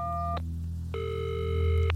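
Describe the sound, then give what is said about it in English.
A phone line rings after dialing: a steady electronic ringing tone cuts off, pauses briefly, then sounds again for about a second, over a low continuous hum. No one speaks. “I laughed out loud, then dialed the number.”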